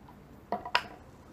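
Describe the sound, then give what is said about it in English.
Dice clatter into an uneven dice tray with two quick, hard clacks, a sharp click followed a moment later by a louder rattling knock, then quiet. Nobody speaks. “Like, every- this is an uneven dice tray.”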